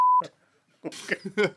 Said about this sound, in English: There goes the beep. Oh, shit, I've got to beep that, haven't I, these days?